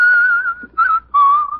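A person whistles a short melody in three bright, steady phrases: a long held note, a brief one, then another sustained tone that dips slightly in pitch. No talking.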